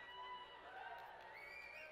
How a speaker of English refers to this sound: Some of you need Jesus really, really bad. That's just, there's no need for that, for booing. That's harsh.